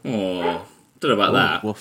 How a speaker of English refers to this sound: Disagrees. My apocalyptic wasteland dog disagrees.